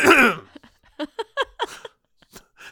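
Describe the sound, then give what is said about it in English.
A loud cough from someone with a frog in their throat bursts out at the start, followed by a string of short, rough throat-clearing grunts and a few fainter catches, with no talking. “I've got an absolute frog in my throat. What? That was a terrible. I'm gonna have to cough now.”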